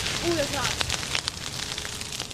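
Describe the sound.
A bonfire of branches that fell during a storm burning in a front yard in the middle of the day in September, giving a steady hiss with scattered sharp crackles and pops throughout; a brief voice sounds faintly at the start.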